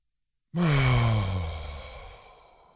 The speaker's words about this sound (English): And then you're going to exhale out the mouth and just let it all go. Get all the air out on the exhale. We're going to do three of those.